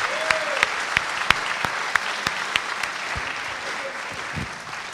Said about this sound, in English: Let's give the Lord a hand clap of praise for all what he's doing.